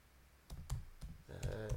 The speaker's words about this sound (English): Ignore the typing of the audience. It's a bit of an ASMR for them.